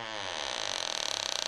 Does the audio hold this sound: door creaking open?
yes